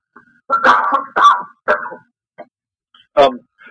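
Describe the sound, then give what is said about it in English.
A person coughs several times in quick succession, a harsh burst of three or four coughs followed by a short pause and one more loud cough. “Excuse me, one second, I have a cough.”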